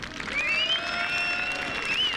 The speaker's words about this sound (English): A great cheer, and that was the voice of Ivor Robson, who has started this championship off for many years.